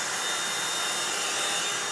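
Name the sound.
vacuum cleaner running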